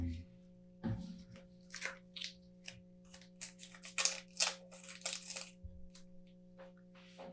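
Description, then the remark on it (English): Small scissors snip into a milk chocolate wrapper, a quick irregular series of crisp cuts and crinkles over a steady low background hum. “I like how you guys have little scissors on deck.”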